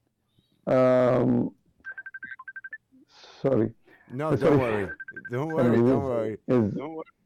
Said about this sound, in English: Don't worry. Somebody is ringing at me.